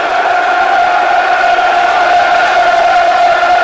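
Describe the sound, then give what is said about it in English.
A large football crowd at a Millwall versus Leeds match roars steadily before kickoff, a dense wall of cheering and chanting voices that stays loud and sustained throughout without any break. “Crowd's up for it.”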